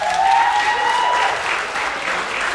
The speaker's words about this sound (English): I want you to applaud him for this